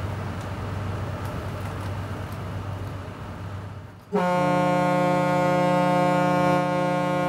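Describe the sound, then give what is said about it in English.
A riverboat whistle on the Kanawha River blows one long, loud, steady blast with rich harmonic tones, starting abruptly after several seconds of low engine rumble and continuing to the end. “If you want the whistle, I'll blow the whistle.”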